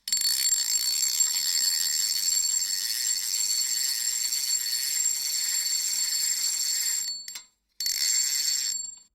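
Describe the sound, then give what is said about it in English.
A fishing reel spins in a steady, high-pitched mechanical whir with a thin ringing tone, runs unbroken for about seven seconds, stops briefly, then whirs again before ending. “It is a fishing reel.”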